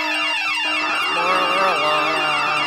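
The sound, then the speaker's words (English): A loud, blaring air horn alarm effect, used as a spoiler alarm, sounds for about three seconds, its buzzy, harmonic-rich tone holding steady with a brief wavering dip in pitch partway through. “Okay, I think it's time to sound the official Binge This spoiler alarm, is it?”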